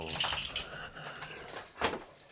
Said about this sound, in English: Like, I hear dogs breathing, dude. That's unsettling, kind of.